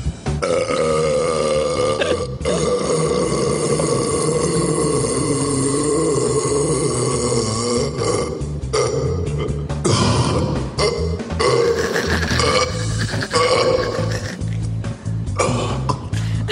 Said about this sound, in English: the world burping champion.